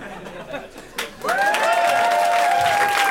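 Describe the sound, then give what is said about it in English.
A live audience breaks into loud, sustained applause that swells suddenly after a brief murmur, with a long sliding whistle or cheer riding over the dense clapping. “For applause now.”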